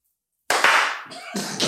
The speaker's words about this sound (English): Just one person clap. Right. You can clap now.